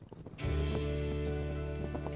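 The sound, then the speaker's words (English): Steady clip-clop of horse hooves in an even, trotting rhythm, set against a sustained droning musical tone that swells in after a brief quieter start. “Horseback riding is how Icelanders got around for 1,000 years.”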